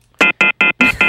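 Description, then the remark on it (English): A loud telephone off-the-hook tone: five rapid, evenly spaced electronic beeps, harsh, with no one speaking. “Is the phone off the hook?”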